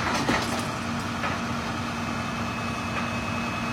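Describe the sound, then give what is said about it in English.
A tow truck's heavy engine drones steadily throughout as it pulls a Range Rover out of the water in Warwick, a loud, continuous mechanical rumble with a sustained humming tone and faint clanks, and no one speaking. “very impressive by Ronnie's tow truck.”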